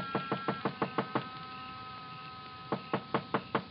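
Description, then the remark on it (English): Two quick bursts of knocking on the door of a dark small frame building on a side street near a park, serving as an office and living quarters, about six or seven firm raps each, separated by a short pause. The knocks are sharp and evenly spaced, with no voices. “But in the hope he might be asleep in his little apartment up above, I knocked.”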